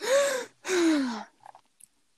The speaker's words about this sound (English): As soon as I shut the door, I gasped for air.